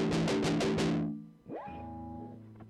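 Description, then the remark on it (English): Heavily fuzzed electric guitar through an Electro-Harmonix Big Muff Pi fuzz distortion pedal (New York City version, from around 2008): five quick, thick chord stabs, then a single sustained note bent upward that rings out loud, with no talking. “With a Big Muff, you can get that fuzz distortion sound without damaging your equipment.”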